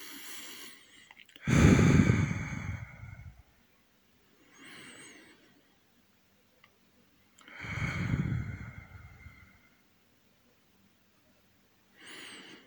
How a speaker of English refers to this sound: We're going to begin by just breathing in deeply through our bellies. Breathing in and out, deep breaths.